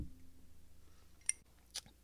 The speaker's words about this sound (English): Sorry, I gotta take a sip.